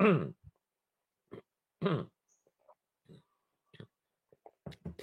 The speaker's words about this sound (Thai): ขออนุญาตดื่มน้ำนิดครับ